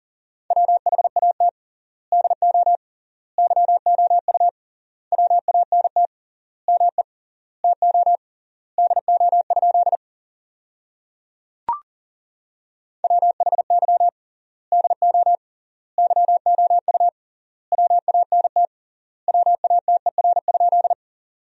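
Fast Morse code at 40 words per minute with triple word spacing, sending sentences made from the 200 most common words: a single steady mid-pitched tone keyed in rapid dot-dash bursts, grouped into words with short pauses between, broken once by a brief click. No voices.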